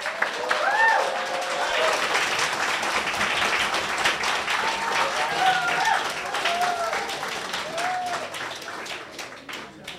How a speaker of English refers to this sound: Pretty awesome. One more round of applause, because that was a pretty amazing bear story.